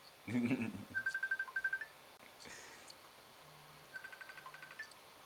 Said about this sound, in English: Here's my daughter's phone ringing. Oh, it's her boyfriend.